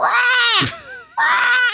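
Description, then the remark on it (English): A person's voice imitates a raven, giving two loud, harsh, drawn-out calls, separated by a brief quieter wavering tone. “That's a raven, because that's what the AP is about.”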